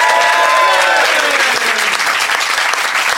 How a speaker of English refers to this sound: Oh, and also a big round of applause for our expert, Dr. Kevin Fernando.